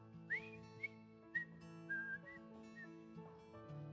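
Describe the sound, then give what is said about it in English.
A few short, casual whistled notes, starting with an upward glide and then a relaxed, wandering tune, heard over a soft, steady bed of low sustained tones. “It literally means like he was just strolling, like a whistle.”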